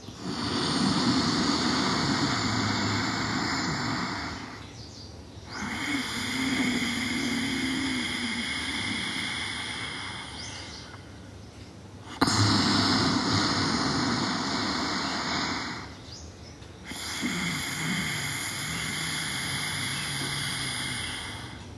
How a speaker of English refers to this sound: Continue doing it. The noise will be similar to a snore, a light snore noise, but coming out from the throat. Constricting the throat muscles while you're inhaling and you're exhaling.